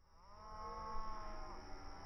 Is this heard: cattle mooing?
yes